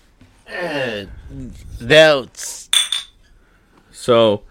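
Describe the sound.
Bottles clink together once or twice in a quick, bright toast, with people talking just before and after.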